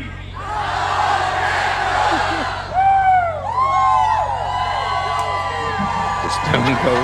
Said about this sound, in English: That's awesome. Dude, listen to that crowd.